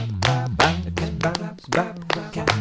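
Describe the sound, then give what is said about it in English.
Steady hand claps or taps, about seven sharp hits in under three seconds, keep an even beat over a bright, sustained musical backing. “Can you clap your hands?”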